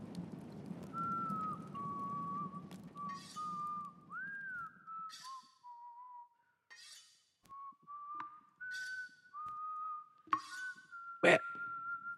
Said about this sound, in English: I believe your skinny knife is in need of sharpening. First things first, though. Get this body down to the playroom so you can treat yourself to some whistling and some sharpening.